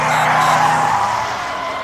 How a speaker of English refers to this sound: Exactly! Like those stop cars? Time to hit the brakes!